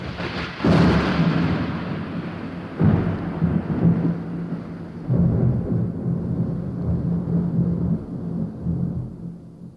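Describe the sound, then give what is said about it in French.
A steady wash of rain fills the scene, broken by three deep, rumbling thunder rolls that surge and fade. No voices, just the continuous downpour and storm. “Tiens, là la pluie. Ah, quel sale temps!”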